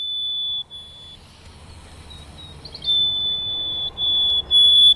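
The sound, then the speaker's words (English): A Harris's sparrow song played back from the Sibley Birds identification app on an iPhone: several long, pure whistled notes at a high, steady pitch, separated by short pauses, over a low rumbling background with no talking. “I wanted to pull up the Harris's sparrow song on my iPhone in the Sibley Birds identification app so I could see what I'm listening for.”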